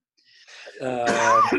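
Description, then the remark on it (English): A man gives a single throaty cough, rough and partly voiced, preceded by a short breathy intake and ending abruptly, with no talking around it. “As he coughs, your host coughs.”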